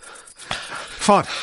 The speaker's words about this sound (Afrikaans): kry jou asemhaling onder beheer. Stadiger, haal stadiger asem.